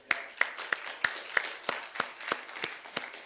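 A short round of applause at a church service: about ten sharp, bright claps in a steady, even rhythm, fairly quiet, with no voices over them.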